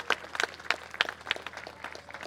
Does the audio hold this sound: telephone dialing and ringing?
no